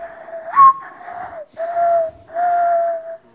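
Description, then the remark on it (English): A singer whistles a bird call imitation on NPR's Ask Me Another: a quick upward chirp followed by steady, sustained whistled tones in a few phrases with short pauses, clear and fairly loud, with no talking. “Do you do any bird calls?”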